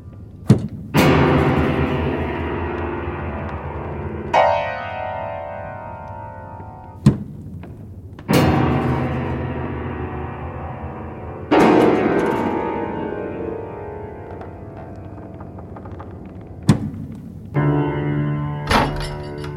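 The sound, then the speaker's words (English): Repeated heavy thumps on tables strike at irregular intervals, each loud thud ringing out with a resonant tail, several overlapping as if many people pound together. No voices are heard. “They've all started banging their tables.”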